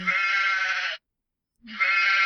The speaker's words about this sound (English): Is that a goat? Was that a she-goat? Well, it was a sheep, which sounds pretty similar to a she-goat, right?